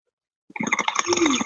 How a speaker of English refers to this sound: Hopefully everyone can hear the bubbles.